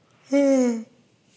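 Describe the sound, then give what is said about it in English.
A woman's single breathy, voiced yawn, about half a second long with a slightly falling pitch, then quiet. “She's yawning. I'm choking.”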